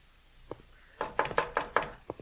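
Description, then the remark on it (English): Sharp knocks by a visiting man on a wooden house door: one light tap, then a quick series of about five firm raps, followed by two softer knocks. Fairly loud, with no voices. “Answer the door,”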